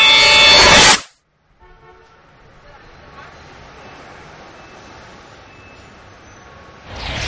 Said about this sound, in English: Air is filled with sounds of honking and screeching and distant rumbling, and the air just smells foul.